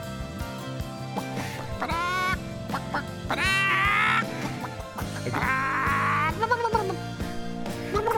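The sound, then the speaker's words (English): A chicken, flying and flapping up to the left, clucks and squawks loudly, a string of harsh, rising calls repeating over about eight seconds against a steady background drone. “Oh my God, Eric, is that a flying chicken up there to the left?”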